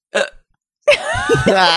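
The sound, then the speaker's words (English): A sharp, brief hiccup close to the mic, then after a short pause a longer stretch of voiced, gulping vocal sounds with another hiccup-like catch in it. “When did I have hiccups?”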